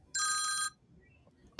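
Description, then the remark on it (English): A single electronic phone ringtone chirps once for an incoming emergency phone call, a bright steady warble lasting about half a second, then drops to near silence before a short click at the very end. “Oh, wait, we got an emergency phone call coming in from the old man.”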